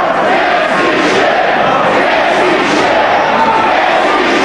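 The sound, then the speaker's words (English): A large wrestling crowd chants "Can't see shit" in unison, loud and sustained, the massed voices rising and falling in a steady rhythmic cadence that fills the whole arena. “The crowd with a great chant. Can't see shit. Can't see shit.”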